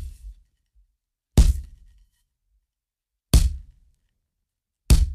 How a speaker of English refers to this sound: As the man slowly made his way back to his daughter's room, the two boys thumped on the walls.